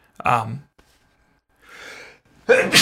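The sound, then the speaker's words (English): A sneeze from someone off camera: a short voiced gasp, a pause, a breathy intake of air, then an abrupt, noisy burst at the end. “sneeze off camera. Bless you.”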